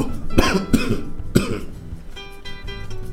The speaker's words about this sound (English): So I swallowed the penny. It got stuck in my air pipe. And I didn't panic at first. I just gave a nice cough.